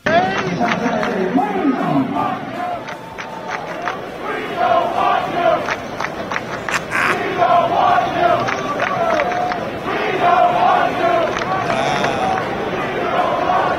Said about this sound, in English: Hawks fans chanting at D'Angelo Russell, "We don't want you." This was like WWE crowd style.